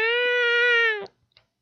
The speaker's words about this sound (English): How about you, Toby? What's your favorite game of the week? I'm sorry, I don't speak cat.